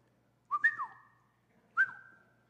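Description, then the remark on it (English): Someone whistles two short, clear phrases with their mouth: a pair of quick pitched notes, a brief pause, then a single held note that fades. No talking, fairly loud. “We wouldn't be able to whistle.”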